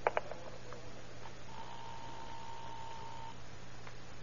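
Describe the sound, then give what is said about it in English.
A telephone being dialed: two quick sharp clicks, then a steady, thin electronic tone holds for a couple of seconds over a low background hum. No voices. “She's up there now. Call her on the phone. Find out if she'll go.”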